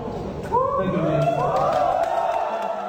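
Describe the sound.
Faint crowd applause mixed with rising cheers and whoops from many voices, a steady wash of clapping and shouting that swells slightly after the first half second and holds.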